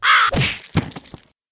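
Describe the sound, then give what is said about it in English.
A single short, harsh caw rings out, then quickly gives way to a few dull thumps and knocks before the sound cuts off. “You want a bird? A living bird?”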